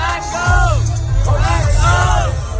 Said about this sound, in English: Later in the evening, during the show, a crowd surge toward the stage killed at least 8 youngsters between the ages of 14 and 27. Cell phone video shows the surge, and members of the audience shouting, "Back up!" can be heard.